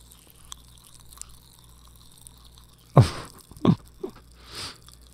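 Pop Rocks candy fizzes faintly against teeth in a mouthful held right against the microphone, then two loud, sharp clacks land close together, followed by softer crackles and a brief hissing crunch. No one speaks.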